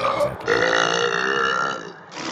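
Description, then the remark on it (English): A long, loud, croaking burp stretches out for nearly two seconds with a rough, rattling texture, followed by a brief breathy exhale at the end. “All right, here's a burp burp fart.”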